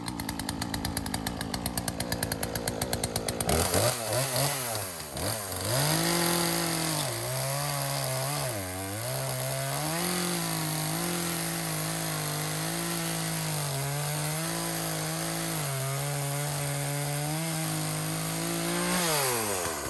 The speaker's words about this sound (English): And Dad just, he just took a chainsaw to all this this wood, and it's pretty incredible.